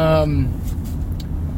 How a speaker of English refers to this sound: We're driving through traffic, so I felt like it was safe enough to post this video.